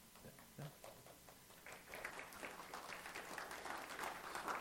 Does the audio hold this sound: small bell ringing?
no